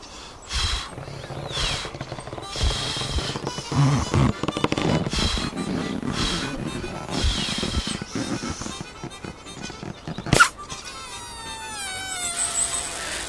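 A balloon being blown up and twisted into the shape of Pluto the dog: rubbery squeaks and whining squeals over rustling handling noise, a sharp snap about two-thirds through, then more squeaky twisting.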